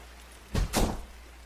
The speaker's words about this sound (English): What was that? Did the bathroom door just shut? It must have been a draft. You must have left the bathroom window open. Right?